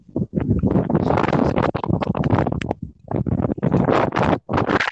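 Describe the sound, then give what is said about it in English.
Loud, gusty wind buffets a microphone outdoors, a rough rumbling roar that surges and briefly drops out a few times, with no voices heard. “It's so windy out here. Is somebody in a wind tunnel? Because that's all I hear.”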